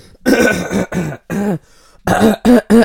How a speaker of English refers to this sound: I'll clear my throat.